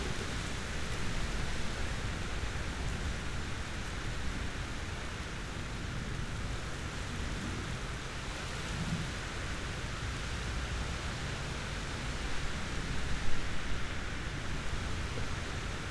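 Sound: heavy rain with thunder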